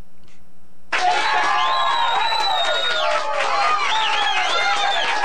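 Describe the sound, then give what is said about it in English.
A crowd bursts into loud, sustained cheering for blue jeans after a brief quiet start, with high whoops and shouting voices layered over a dense roar that holds steady for several seconds. “This is the last time you heard chairs for blue jeans.”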